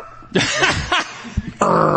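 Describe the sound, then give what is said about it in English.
A person imitates a dog's growl and bark with rough, raspy vocal bursts, a couple of short gruff barks and then a longer harsh growl, loud. “the guys that are like, rawr, they like growl while they're rapping”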